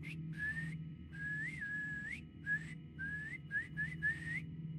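A person whistles a simple tune at night in a graveyard, in several short, rising phrases separated by brief pauses, clear, over a low, steady background hum with no talking.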